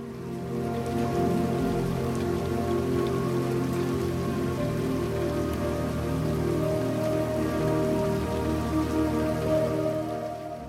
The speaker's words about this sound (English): There's no pause, no break. The water is constantly moving.